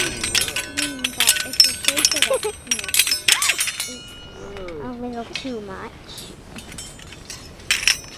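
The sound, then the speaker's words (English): Bright metallic tinkling of a wind chime the children have made, with ringing high tones that shimmer and overlap through the first few seconds. Children and adults talk over it, and a few faint chimes return near the end. “Girls, come over here for a minute and let's see if we can hear our wind chime.”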